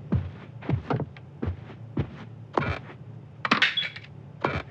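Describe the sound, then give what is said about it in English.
Coins clink one after another as they drop into a vending machine outside to buy chips, roughly ten sharp metallic taps at an uneven pace over a steady low hum, with no voices. “But the vending machine outside has plenty of chips.”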